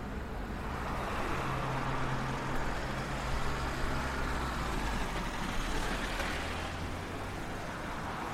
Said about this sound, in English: Another busy road. We're going to cross this and walk directly into the park we can see in front of us